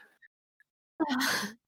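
After a near-silent moment, a person breathes out heavily right up against the microphone, one loud breathy exhale lasting about half a second.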